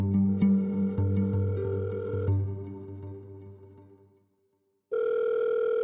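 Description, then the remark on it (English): Music fades out into a brief silence, then a steady electronic telephone ringing tone starts abruptly, loud, as an outgoing phone call rings on the line. “I make a phone call.”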